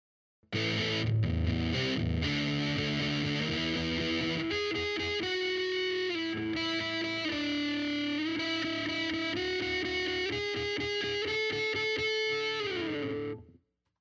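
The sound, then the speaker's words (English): Electric guitar played through a Big Muff fuzz pedal plays alone, heavily fuzzed, loud and thick, opening with chunky chords and then sustained singing lead notes that slide between pitches before cutting off abruptly. “I think it sounds like a bit of an interesting flavor on a distortion pedal. But let's give it a listen.”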